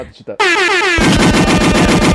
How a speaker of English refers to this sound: I was looking for the gunshot. Now I know where the gunshot is.